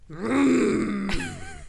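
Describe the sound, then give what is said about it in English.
A voice imitates a Hummer's engine roaring: one loud, sustained, gravelly growl lasting under two seconds, rising in pitch and then shifting abruptly near the end, with no words spoken. “Hear it roar.”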